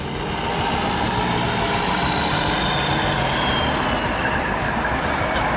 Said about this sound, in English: The engine roared again, and they barreled out into the street.